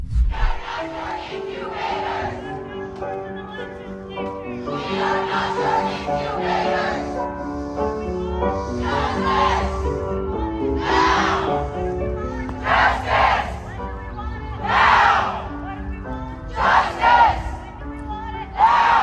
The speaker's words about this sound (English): You can hear them screaming and shrieking and going up and down the residential neighborhood.